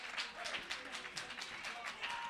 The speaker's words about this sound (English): Oh, somebody clap your hands and give him great praise.